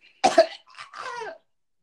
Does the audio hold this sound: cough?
yes